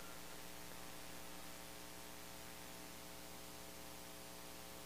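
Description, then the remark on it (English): A low, steady feedback hum drones without a break for the whole stretch, layered with a constant hiss of static. It stays fairly quiet and unchanging, and no one speaks. “We got a little bit of feedback going.”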